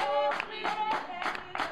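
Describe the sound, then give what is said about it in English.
Steady rhythmic hand claps and foot stomping of a ring shout, roughly three per second, fairly loud over voices singing together, as worshippers shuffle in a circle. “Worshippers move in a circle, shuffling and stomping their feet and clapping their hands.”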